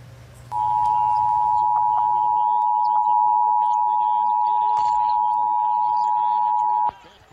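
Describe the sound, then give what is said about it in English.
A TV emergency alert tone broadcast in Hawaii for a false missile threat: one loud, steady, high-pitched electronic beep held unbroken for about six seconds, with a voice speaking underneath it. “Now, this is how TV viewers in Hawaii learned of this false missile threat.”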